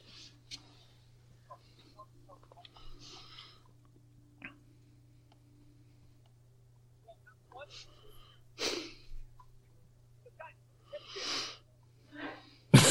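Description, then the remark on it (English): A person sneezes, a sharp, noisy burst that stands out over a steady low hum, with a few more breathy bursts following in the quiet seconds afterward. “God bless you.”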